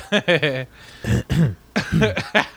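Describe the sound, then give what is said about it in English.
A loud run of short, rough coughs, about half a dozen bursts in quick succession with brief pauses between them. “Did I get my 12 o'clock cough in? Did I get my 1 o'clock cough in?”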